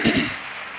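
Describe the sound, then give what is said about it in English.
A short burst of many hands clapping together, a dense crackling wash of applause that swells briefly at the start and then thins out quickly into a soft hiss, as listeners clap to show they are ready to receive God's word. “Clap your hands if you're ready to receive God's word.”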